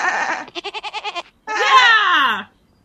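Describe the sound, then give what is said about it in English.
A goat bleats loudly: a short cry, then a rapid quavering bleat of about seven pulses, and after a brief pause a long, drawn-out bleat that slides downward. “What do you think of this goat?”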